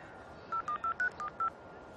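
A quick run of six touch-tone beeps from a phone keypad as a number is dialed, each short electronic tone slightly different in pitch, over a faint background hiss with no talking.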